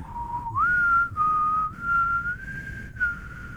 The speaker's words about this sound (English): You got to work on your whistling skills. Yeah, I know. I got cotton mouth right now.